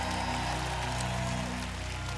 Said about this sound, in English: If you're declaring the new in 2018, lift a clap and a roar before the Lord right now.